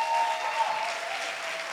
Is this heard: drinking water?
no